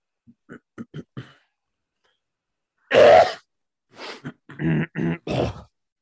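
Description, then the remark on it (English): A few soft clicks, then a loud, harsh throat-clearing burst, followed by several shorter raspy rumbles as the throat clears again. No one speaks. “I had to clear my throat after swallowing all that semen.”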